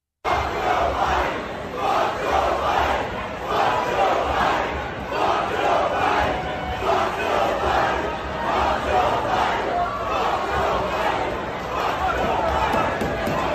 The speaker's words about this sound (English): And sometimes you get crowds at bars, not a very huge crowd, but it's a pretty packed bar. You'll see videos of the entire bar that starts chanting.